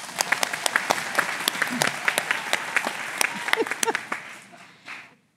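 loud applause

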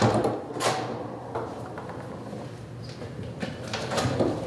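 locked door being opened

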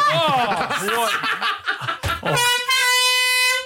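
air horn blast

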